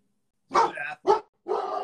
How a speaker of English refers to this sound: I apologize. That's what it's like at the house with a hound dog.